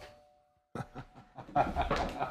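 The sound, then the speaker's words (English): A doorbell, set off by a woman leaning against it on her way to the neighbouring apartment, rings a steady chime tone that fades out over the first moment, then excited voices and bursts of chatter take over loudly. “Woman that's going to the apartment next to me, and she just leaned against the okay, the doorbell.”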